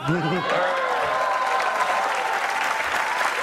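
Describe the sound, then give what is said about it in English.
A Saturday Night Live studio audience breaks into steady, sustained applause for a Republican politician appearing on the show, a dense wash of clapping that holds at an even, fairly loud level throughout, with a brief voice fragment at the very start. “Why does he get an applause?”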